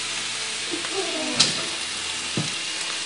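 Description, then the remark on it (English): Orange juice sizzles steadily in a hot pan as it reduces and caramelizes, a continuous bright hiss with a few soft scrapes or clinks of a utensil stirring partway through. No one speaks. “So in other words, when you do this and you're reducing it, mm-hmm. it's caramelizing it.”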